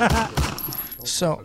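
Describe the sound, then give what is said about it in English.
A voice imitates gunfire: a few harsh, rapid bursts with gritty, breathy noise, ending in a hissing blast and a short voiced tail. “He's about to shoot fire on the sound effect.”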